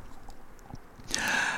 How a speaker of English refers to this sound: Sorry for the cough sweet noises, but I'm just trying to make sure my voice lasts the whole match. You'll have to indulge me, I'm sorry.